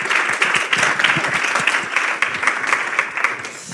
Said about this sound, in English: another round of applause for our friend Lewis Bollard